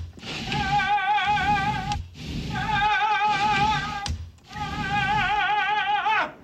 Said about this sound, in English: So he's opening and closing the door on the balcony.